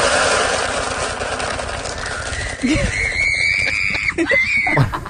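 A woman screams loudly and shrilly as a horse bolts and takes off with her out of control, her long, sustained cry rising and holding over a rough, rumbling background of movement and commotion, with a possible brief whinny near the end.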